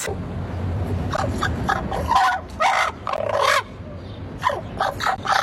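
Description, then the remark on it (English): A crow gives a series of harsh, raspy caws in uneven bursts, loud, over a steady low rumble of background noise. The bird is following a woman and perches on a parking meter she stands next to. “That is an ugly noise.”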